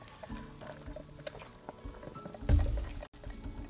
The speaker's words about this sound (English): Speaking of, I need another sip of Mountain Dew.